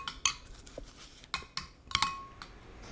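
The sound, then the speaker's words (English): Orange pudding made with apricots, golden raisins and nuts being served into dishes: a series of sharp, irregular clinks and taps of a utensil against dishes, a few with a brief ringing tone, over a soft background and no talking. “Yes. Let's pour some.”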